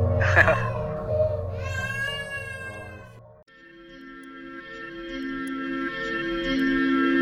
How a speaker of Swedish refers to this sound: Ja, vi fick göra en ding-dong-dong för det kom ett barn och skrek.